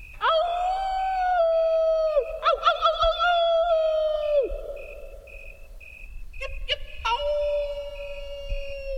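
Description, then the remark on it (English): Grasshopper mouse howling calls in the Idaho desert: several long, thin, whistle-like tones held for a couple of seconds each, clear and fairly loud, with brief chirpy bursts between them and no talking. “It's comforting to know that the same laws of nature that govern wolves also govern mice and men.”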